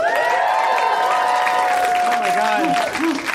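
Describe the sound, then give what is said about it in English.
A small live crowd of about a dozen people at the Nerd Melt claps and cheers steadily, with dense, continuous applause and high whoops and shouts rising over it, sustained at a strong level for a few seconds. “It's amazing how much noise 12 and a half people can make.”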